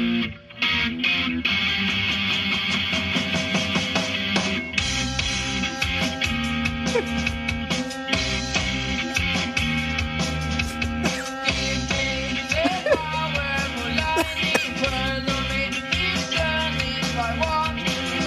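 A pop song with a busy synth keyboard line playing over bass and drums, with sustained bright, slightly distorted tones layered throughout. It stays steadily loud for the whole stretch, with no voices.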